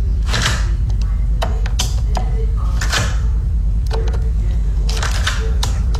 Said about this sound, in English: The last one was my door lock. Ah, okay. So it's just like closing it and unlocking it and all that sort of stuff.